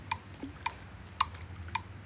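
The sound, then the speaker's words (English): A fishing lure is smacked onto the water four times to knock weeds off it, each a short, sharp splat in a steady rhythm against a low, constant background hum, with no one talking. “Now we need my second most used way of getting weeds off, and that's just smacking the lure into the water, not the rocks.”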